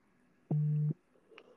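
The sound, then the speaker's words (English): A single short, low electric buzz of a mobile phone vibrating lasts under half a second, loud against an otherwise quiet background with a few faint noises afterward. “Is that your phone? What is? Your phone vibrating.”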